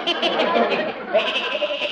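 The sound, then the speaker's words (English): A goat named Arthur bleats loudly, one long quavering cry that wavers in pitch for about two seconds without a break. “I couldn't list Arthur the goat.”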